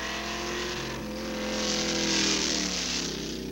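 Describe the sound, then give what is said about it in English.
A car engine drones loudly and steadily, then revs up, its pitch climbing and the roar swelling for a moment before easing slightly. No one speaks. “Listen to the car. Does this thing move?”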